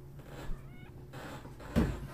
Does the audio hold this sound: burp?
no